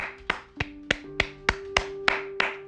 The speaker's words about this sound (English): So you know what? Let's give ourselves a round of applause for making it through this coronavirus and still being here.